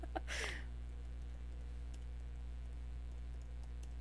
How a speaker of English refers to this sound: I'm typing this with one hand.